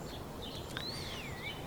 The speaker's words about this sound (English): Now, not necessarily talking about watching a bird chirping, although there are birds chirping outside a cafe anyway right now, interestingly.